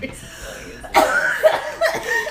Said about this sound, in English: Oh! Me blowing my nose going to be on the podcast?